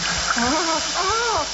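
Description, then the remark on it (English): Hot tea pours from a teapot into a person's lap in a steady splashing stream for a second or two while a voice wails and groans over it, rising and falling in pitch. “Pick up the teapot. You want some tea? No. I want you to pour it into your lap.”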